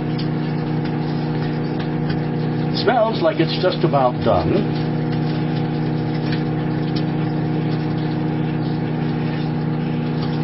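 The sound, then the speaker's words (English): Bacon sizzles in a microwave as part of a bacon and eggs breakfast, a faint, steady crackle riding over the appliance's constant low humming drone, with a man briefly speaking partway through. “Bacon is still sizzling.”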